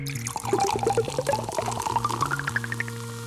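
A synthesized soda fizz for Coca-Cola advertising, made by hand on a big, old-fashioned early synthesizer rather than recorded from a bottle: bubbly pops rise steadily in pitch over a low pouring gurgle, like a glass filling, with no voices.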